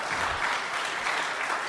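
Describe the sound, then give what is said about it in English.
A crowd claps steadily, a dense, even wash of many hands at moderate loudness, sustained without breaks and with no voices standing out. “And I was like, hey, listen, let's clap it up for Honey.”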